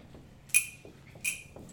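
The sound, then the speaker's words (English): Two bright metallic jingles of pass keys to doors, about three-quarters of a second apart, fairly crisp, with a faint low rumble beneath and no one speaking. “You see, I have pass keys to all the doors.”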